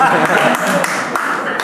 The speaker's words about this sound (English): A round of applause.